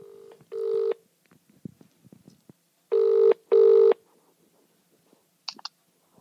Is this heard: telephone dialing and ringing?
yes